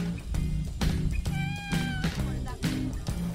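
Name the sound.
cat meowing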